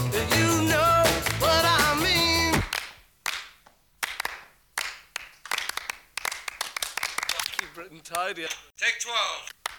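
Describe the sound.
A burst of music gives way to overdubbed rhythmic hand claps with an echo, added to an album's opening track during recording, sharp repeated smacks in a steady beat, briefly joined by a voice near the end.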